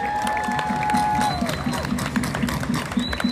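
A crowd claps steadily, a dense and fairly loud patter of applause with a few sustained tones and bits of noise riding over it.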